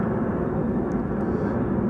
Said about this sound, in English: Oh, there goes a low plane. Oh, man. That's a Southwest up there.